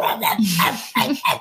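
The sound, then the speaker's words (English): Two dogs, Cookie and George, bark in quick succession, several sharp, fairly loud barks, with a brief pause partway through before more barking resumes. “Cookie and George, can you hear them barking?”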